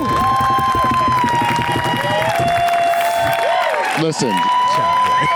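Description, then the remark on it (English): A loud, dense crowd at a live show cheers and applauds nonstop for the show's co-host, with whoops and shouting voices layered over steady clapping for several seconds, briefly dipping near the end before swelling again. “They love you, chat boy. I can hear it.”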